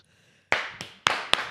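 Four sharp hand claps, loud, in a slightly uneven rhythm after a brief quiet moment, each one ringing out briefly inside a van.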